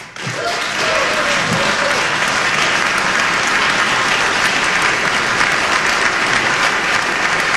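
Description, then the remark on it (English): Loud, steady applause from a large crowd in a General Assembly chamber during a speech about parents' rights starts almost at once and holds at an even, dense clatter of many hands for several seconds without fading. “No Democrats applauded that?”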